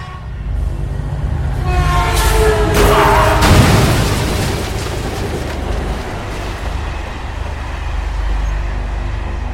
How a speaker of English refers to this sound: Sparks and fire illuminated the area as the train crashed right into my car. The blast sent me flying backwards.